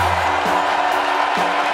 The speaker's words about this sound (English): Texas Senator Ted Cruz being booed off of stage at the Republican convention last night.